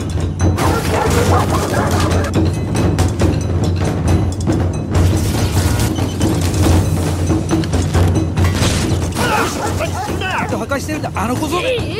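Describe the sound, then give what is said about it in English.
A dog barks and yips repeatedly over a loud, cluttered background of crashing noise and vocal sounds, ending in a run of high, whining yelps. “I wish somebody spoke his language.”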